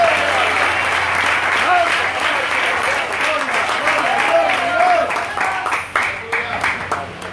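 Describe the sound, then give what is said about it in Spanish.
A church audience applauds to give glory to God in a dense, steady wash of clapping that lasts several seconds, with voices calling out over it before the clapping thins slightly toward the end. “Hermanos, denle gloria, aplauda, denle gloria.”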